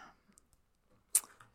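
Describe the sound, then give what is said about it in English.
Faint shuffling of a Starseed Oracle card deck: a few soft clicks and taps, then one brief, sharp riffle of cards near the end, with no talking. “So I'm just going to shuffle. Is this the, what deck is this while you're shuffling?”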